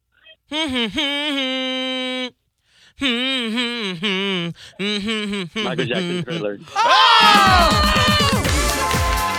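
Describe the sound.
A voice hums a pop-song melody over the phone for a caller to guess, in short phrases separated by brief pauses, the pitch sliding and wavering between notes; near the end, louder and denser voices burst in over it.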